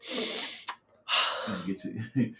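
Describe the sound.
A loud, honking sniff, drawn hard through the nose twice with a sharp catch between them, followed by a brief murmur of voice.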